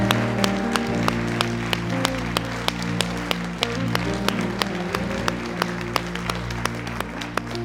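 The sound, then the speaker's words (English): An audience gives the Lord a hand clap, clapping in a steady, even rhythm, sharp regular claps riding over a sustained, droning musical accompaniment for several seconds, with no talking. “Come on, let's give the Lord a hand clap today, please.”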